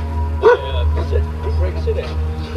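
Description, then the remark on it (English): A leashed German Shepherd at a house lets out one sharp bark, then a few softer yips and whines over a steady low hum, with faint voices in the background. “a man walks over from the side of the house to greet the officers, along with his leashed German Shepherd.”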